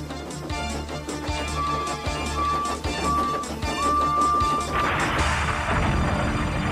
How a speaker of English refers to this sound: The wagons were splintered as Edward crashed through them with a bang and rolled into some overgrown grass.